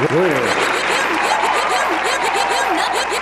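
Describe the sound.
A steady round of applause for a person who supplied the right answer, dense and loud, with whooping and laughing voices rising and falling over the clapping.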